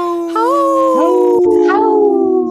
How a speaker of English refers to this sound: We're waiting for everybody's dog, including Dr. Stately's dog, to howl.